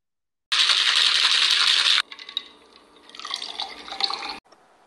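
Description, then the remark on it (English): Liquid is poured into a cup: a loud, steady rushing stream that breaks off into lighter splashes, trickles and clinks as the cup fills, with no voices. “Get ready to pour up with us.”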